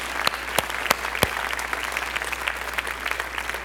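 An audience claps together in a steady wash of applause for the 2017 Myanmar Missions Trip Team, with a few sharper, louder individual claps standing out near the start, continuing evenly without voices.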